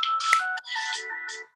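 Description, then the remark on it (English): A phone ringtone plays loudly, a bright electronic melody of steady tones with a brief break in the middle, with no voices over it. “I don't know why that my phone rang.”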